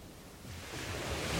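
Ocean waves wash onto the shore in a steady, hissing rush that swells gradually louder over a second or so, with no voices present.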